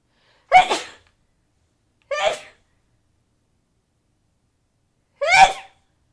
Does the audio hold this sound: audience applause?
no